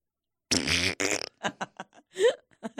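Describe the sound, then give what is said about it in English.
A loud, buzzy fart rips out in one long blast with a sputtering tail, followed by a string of short, choppy vocal bursts. “He was doing a good job hiding until he fucking farted.”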